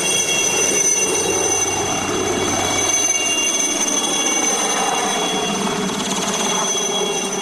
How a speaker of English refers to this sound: And I watched as the blades began to whir and the wind blew up, and they blew the tears off my face as the helicopter set off to the place I wanted to go.